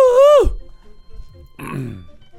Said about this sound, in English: Because you're burping, and you don't want anyone to hear your burps.